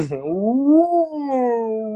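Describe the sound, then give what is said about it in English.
A person imitates a whale call with one long, moaning voiced tone that rises in pitch, peaks, then slowly sinks and holds, steady and fairly loud for about two seconds. “Look, trust me, I didn't know you were gonna go from a land animal to a water animal that fast.”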